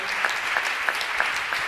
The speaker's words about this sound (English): And keep clapping, because the biggest applause goes to all of you all that are out in the audience.